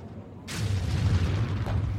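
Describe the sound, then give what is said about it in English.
A sudden explosion in a war zone bursts in at once, followed by a heavy, rumbling boom that rolls on with crackling debris and deep low-end thunder, loud, with no voices. “All around me, explosions.”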